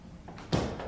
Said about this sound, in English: Okay, let me shut the door.